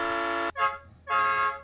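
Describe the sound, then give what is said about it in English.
A loud, brassy horn honks three times: a long blast, a quick short toot, then another long blast, each a steady buzzing tone with no voices. “The subway doesn't have a horn.”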